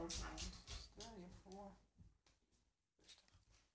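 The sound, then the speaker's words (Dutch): A dog, Alfa, lets out a few short, high-pitched whines in quick succession, rising and falling, on seeing another dog walking, over a muffled background with faint voices. “Nu ziet ze een hond lopen.”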